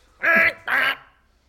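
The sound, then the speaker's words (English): A person imitates a swan with two loud, nasal quacking calls in quick succession, each lasting about a third of a second. “Do a better Liam Neeson as a swan impression, and I'll give you a fiver.”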